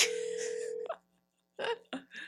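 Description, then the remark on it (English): A phone call connecting: a steady electronic line tone over hiss, then a brief pause and a few short crackly bursts as the line picks up. “Let's call.”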